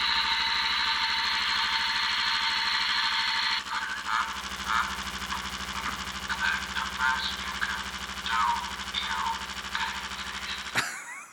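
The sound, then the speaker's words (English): A vibrating toy figure of a character strapped in an electric chair, with red-glowing eyes, buzzes loudly and steadily, a harsh mechanical drone throughout, while its recorded voice coughs, laughs briefly and says "is that the best you can do, you pansies?" over the rattling hum before it cuts off. “Now, I know it was a bit loud with the vibration and everything, but what he says is he coughs, laughs a bit, and says, is that the best you can do, you pansies?”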